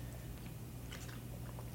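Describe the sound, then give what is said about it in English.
Quiet chewing of crunchy cereal, with irregular crackly bites over a steady low hum and no talking. “Double dip crunch, yeah.”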